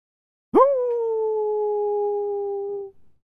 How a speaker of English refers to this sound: Oh, is that wolves? The sound of wolves beginning to howl.